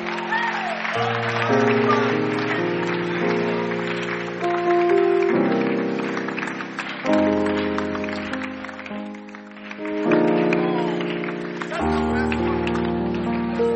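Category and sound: crowd, audience clapping hands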